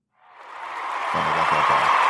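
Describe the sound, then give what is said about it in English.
A crowd bursts into applause that swells up over the first second and holds steady and full, with a low rumble of cheering voices joining in toward the end. “Oh, self-applause.”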